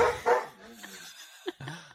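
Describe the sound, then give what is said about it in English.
A dog barks twice in quick succession, followed by a few softer, shorter yelps and murmured voice sounds in the background. “My dog is making this really hard.”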